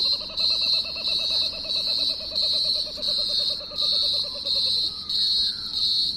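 A kookaburra's rapid, rhythmic laughing call runs for about five seconds, a string of repeated harmonic notes, with a steady high insect-like buzz pulsing in the background, on the Mornington Peninsula at sunset, looking across the bay.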